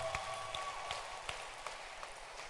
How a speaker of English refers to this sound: So when you get someone teaching you what is good, you must clap your hands for that pastor.